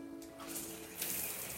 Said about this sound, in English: A nice shower always feels so good.